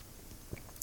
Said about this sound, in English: Let me just have a little sip of my drink.